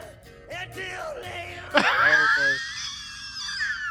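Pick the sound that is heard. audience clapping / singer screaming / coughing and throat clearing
singer screaming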